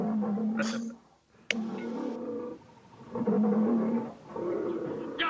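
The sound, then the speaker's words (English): A lion roars in a series of deep, loud, rumbling bursts separated by short pauses, with a sharp crack between the first two; no one speaks. “See, that's the real lion right there.”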